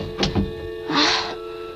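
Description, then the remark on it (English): A door swings and is pushed shut as someone steps back inside, with a couple of quick knocks and rattles, followed by a brief rushing, scraping sound as it settles closed, with no voices. “Stepped inside again and shut the door.”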